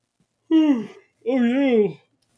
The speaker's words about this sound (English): yawning. We're falling apart.